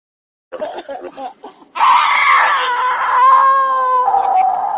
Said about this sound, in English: Is she howling? That was unnecessary.